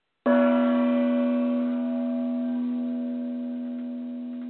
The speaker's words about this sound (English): And the sound effect was just that cherry on top. Thank you. Yeah, that's my gong. That's, you know, everyone should have one. Bang a gong, as they say.